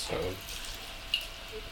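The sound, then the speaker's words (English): A murky New England style IPA beer, hopped with Cashmere, Citra and Amarillo, pours out in a quiet, steady stream with a soft fizzing hiss and faint splashes, followed by a brief higher-pitched gurgle near the end. “Oh, just pouring out, it looks murky.”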